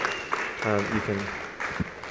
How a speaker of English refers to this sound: Excellent. Can we give these guys a clap?